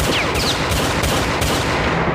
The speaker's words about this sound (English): Sorry for the random gunshots there. We're watching Doom.